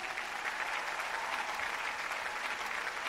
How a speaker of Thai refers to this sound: ปรบมือให้ธุรกิจแอมเวย์หน่อยครับ